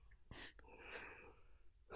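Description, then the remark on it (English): A breathy yawn: a sharp intake of air followed by a long, drawn-out airy exhale with a faint voiced tone, ending in another quick breath. “Stop yawning!”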